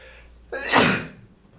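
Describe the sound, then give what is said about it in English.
A single sharp sneeze erupts suddenly, a short explosive burst of breath that is loud, then trails off quickly into quiet. “Bless you.”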